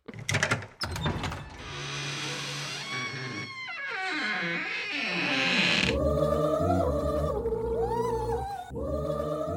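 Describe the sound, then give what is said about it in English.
A huge gingerbread door in a game groans and creaks open, its drawn-out, wavering pitch sliding up and down, loud, with sustained tonal music swelling around it. No one speaks. “I reckon we're ready to go through this giant gingerbread door into the final stage of the game.”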